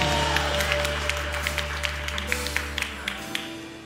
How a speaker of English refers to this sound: Why do they clap so much around here? It's because it's praise. When God does something good, we clap.